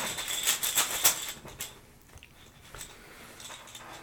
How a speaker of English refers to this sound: That's right. ASMR that bitch. Make sure people can hear it. He's shaking the dice bag full of plastic poker chips.